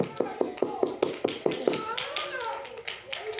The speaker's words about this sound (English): It's an honor and a privilege to serve God. Yeah, you can clap your hands on that.